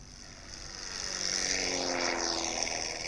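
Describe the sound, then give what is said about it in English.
A small propeller airplane drones steadily overhead, its buzzing engine swelling louder as it passes by, with the pitch shifting slightly as it flies over. No voices are heard. “Wherever she is today, Evelyn Johnson is probably sitting in the right seat of a two-seat airplane.”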